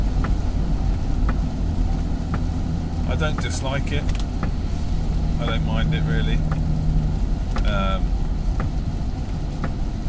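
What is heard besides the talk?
old car driving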